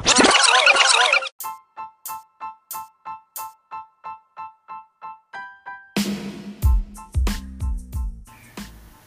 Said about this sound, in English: Can you stop banging the dishes?